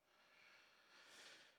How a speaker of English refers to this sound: snoring. He's too far away from the mic. Darn it.